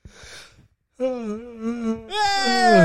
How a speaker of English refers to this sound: Keep yawning today. I'm tired, I guess.